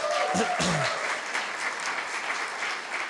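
An audience applauds steadily, a dense wash of many hands clapping at even loudness for a few seconds, with a brief whoop or cheer rising above it at the start.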